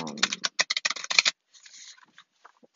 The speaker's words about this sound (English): But yeah, you hear me shuffling the cards. I'm going to pull 4 cards this time, though.